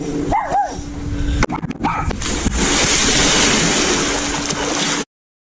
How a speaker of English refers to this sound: Would you like to see my dog? Come here, Fido Spot. Bark, bark, woof. I am dog.